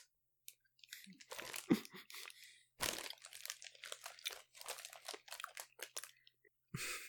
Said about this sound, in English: This one's going to be a big one for the ASMR heads because I am smacking and chewing in here. Yeah, I think one is enough for this one. We don't need to spend hours chewing it.